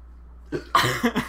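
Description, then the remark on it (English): A throaty burp rolls out in a few rough, croaking surges after a brief lead-in, lasting about a second and fairly loud, with no talking over it. “We should go to one of those burping competitions when this whole COVID thing is over.”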